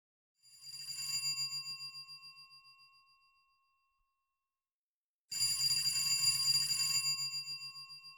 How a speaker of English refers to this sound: In Berlin, at the Italian embassy, the phone rang on the desk of the Italian ambassador to Germany, Bernardo Attolico, a veteran diplomat with a long career as an Italian representative in the League of Nations.